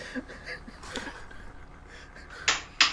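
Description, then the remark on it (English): Two sharp, loud hand slaps land close together near the end, after a few softer, quieter smacks earlier over a low background murmur. “It's a lot of slapping going on.”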